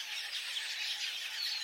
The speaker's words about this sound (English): The red-billed quailia is a small, finch-like African bird that migrates long distances in massive flocks.